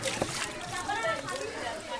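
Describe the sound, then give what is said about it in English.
Water runs steadily from a public faucet in a neighborhood with a continuous splashing hiss, while kids and women gathered around it chatter indistinctly. “She and some younger kids from this neighborhood have gathered around a public faucet.”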